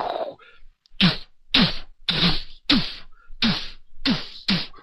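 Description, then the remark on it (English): A series of about seven sharp, loud pickaxe strikes used as battle sound effects for the fight at the end, at a fairly steady rhythm, each a harsh crack with a brief low, falling thud, with no talking. “That's the sound effects of the battle.”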